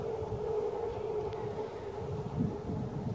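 A distant BART commuter train rumbles steadily, with a sustained tonal whine riding over the low roar. The sound stays continuous and fairly even throughout, with no one talking.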